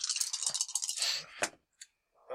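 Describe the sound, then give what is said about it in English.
Dice rattle briskly in a hand or cup for about a second, then clack onto a hard surface with a sharp knock and one last small tap, fairly quiet, as the dice are rerolled. “I will reroll that.”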